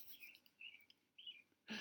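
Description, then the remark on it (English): Birds chirp faintly in the background, a few short high tweets spread across the moment, with a brief louder burst of noise at the end. “And the birds are even chirping in the background when you said it.”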